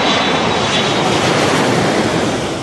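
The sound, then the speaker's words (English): A loud, steady roar of airplane jet engines at YVR airport in Vancouver fills the whole clip, with a thin high whine riding over the rumble and easing slightly at the end. “Landing planes safely at YVR is a complex job done by air traffic controllers.”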